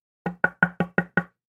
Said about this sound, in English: So in this moment, I knew that when something knocks, you answer. But the question is how to answer. Do I open the door?